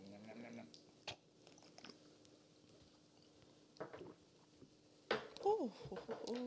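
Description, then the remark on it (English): Wet gulping sounds of someone swallowing a shot, a few scattered swallows over quiet background, with a louder cluster near the end alongside a brief voice. “I heard gulping.”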